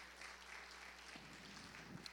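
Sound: audience hand clapping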